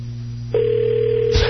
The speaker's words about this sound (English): Okay. Phone is ringing. Oh, my God.